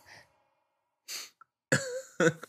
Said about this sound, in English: Do your thing. Smell that? That's me? Sniffing.